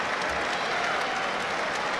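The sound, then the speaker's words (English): A large stadium crowd at Molineux applauds steadily after a game against Tottenham as Gary O'Neill applauds all four sides, a dense wash of clapping that holds at an even level for the full two seconds, with no clear voices standing out. “Gary O'Neill applauding all four sides of Molineux.”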